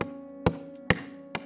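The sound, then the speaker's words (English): Three evenly spaced knocks on a door, sharp, rapping in a steady rhythm over a low background hum with no one speaking. “But at the end of the day, He will be knocking.”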